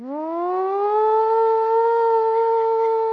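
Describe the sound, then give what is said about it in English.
A tornado warning civil defense siren in Nebraska, going off for a tornado, winds up from a low pitch into a loud, steady wail and holds it, with no voices present. “You know, when the perfect storm happens in Nebraska, we call that a tornado. And the sirens go off.”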